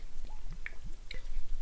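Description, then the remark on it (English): Someone takes a few sips of water from a glass, with soft wet gulps and small clicking swallows spread over a second or two, fairly quiet and with no talking. “As always, I've got my customary drink of water here.”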